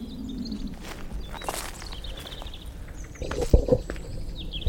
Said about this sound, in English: That was me not negotiating a fence successfully. I did scare some rabbits.